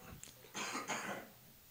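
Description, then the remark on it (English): Two quick coughs in a row, harsh and breathy bursts with a short gap between them, heard on their own without any talking. “Sorry, I just need to cough for a sec.”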